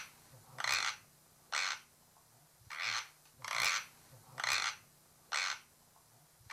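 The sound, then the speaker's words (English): Six harsh, crunchy grinding rasps imitating tooth grinding, each under half a second, repeat in a steady rhythm with short quiet gaps between them. No one speaks. “I might try and find a clip of a sound of tooth grinding and really?”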